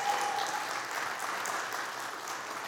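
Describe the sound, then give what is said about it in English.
An audience at a Remnant church service turns around and claps together for the people who work there, in steady applause, a dense, even wash of many hands that holds at a moderate level for the whole stretch without voices rising above it. “Turn around and give them a round of applause.”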